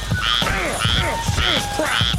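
Frogs croak in a steady, repeating rhythm, about four loud calls in two seconds, each a buzzy, bubbling trill over a dense chorus of background frog noise.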